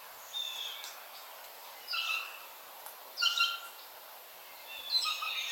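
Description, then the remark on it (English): Birdsong in a back garden in America, with several short, bright phrases of high chirps and whistles arriving in bursts a second or so apart, with no voices. “Well, I never thought I'd be listening to American bird song in a pandemic lockdown, but there you go.”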